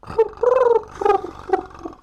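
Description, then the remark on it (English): A woman imitates a pigeon's trill with her voice, giving a warbling, gurgling coo in several uneven bursts, the longest in the middle, at a moderate volume with no talking. “Is she's able to mimic the trill of a pigeon.”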